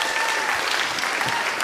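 A crowd applauds steadily, a dense wash of many hands clapping at an even, fairly loud level throughout, with no voices standing out.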